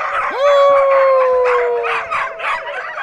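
Several dogs howl together in a loud, drawn-out chorus as their owner calls to them for a final goodbye, one long rising wail sliding up and holding steady while other wavering howls overlap around it.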